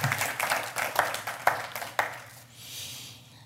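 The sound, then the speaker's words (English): A church audience claps as an offering to the Lord for a member who won a game during the Fall Council, a dense, steady burst of applause with sharp individual claps standing out, then the clapping fades off to a soft hiss within a few seconds. “just give a clap offering to the Lord because he did a great job.”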